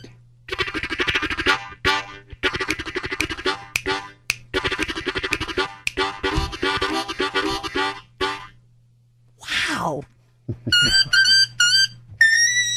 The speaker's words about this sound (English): But I swear to God, these are first act discovery, learn and play harmonicas that I got at the toy store. And you just made it sound like that.